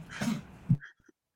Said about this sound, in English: My dog is coughing up, so I have to make sure he's okay.